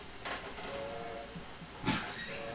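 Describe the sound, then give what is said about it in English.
A steam train whistle sounds in a steady, breathy tone, broken by two short bursts of hissing steam, with a faint rumble underneath and no voices. “It's a steamer whistle. A train.”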